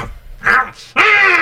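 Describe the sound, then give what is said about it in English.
A dog barks twice, a short sharp bark followed by a louder, longer drawn-out one that trails into a whine-like tone. “You scared our dog.”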